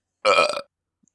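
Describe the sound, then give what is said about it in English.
A single loud burp, raspy and voiced, lasting under half a second, followed by silence apart from a faint tiny click. “I just burped again.”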